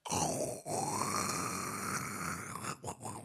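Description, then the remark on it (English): An English bulldog snores, one long rough rasping breath drawn out for a couple of seconds, then a few short snuffly snorts. Loud and raw, with no talking. “will snore awake with her eyes open.”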